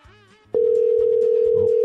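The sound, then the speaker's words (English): After a moment of faint background murmur, a loud, steady telephone ringback tone begins abruptly and holds unbroken to the end, as an outgoing call to a photographer rings and goes unanswered. “Three ringy dingies.”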